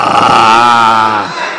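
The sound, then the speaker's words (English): A voice imitates a roaring lion with one loud, sustained, rumbling growl that lasts just over a second before trailing off, alone. “You hear, you think that a lion is on the other side of the garden.”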